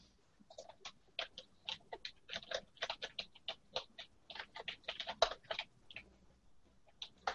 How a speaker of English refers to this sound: Start typing things into the show.